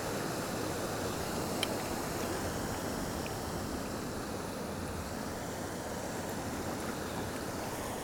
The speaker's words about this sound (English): I'm going to poke the bow of my kayak into the waterfall. Oh yeah, there we are.